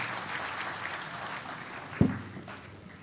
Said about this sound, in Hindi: कैसर खालिद साहब का इस्तकबाल कीजिए ज़ोरदार तालियों के साथ, तशरीफ़ लाते हैं कैसर खालिद।